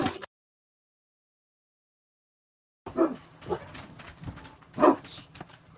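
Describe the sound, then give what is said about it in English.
Dogs bark in short, irregular bursts after a stretch of silence, with one louder yelp near the end. They are not loud. “Between the internet and between the damn dogs, I might just shut the thing off and call it good.”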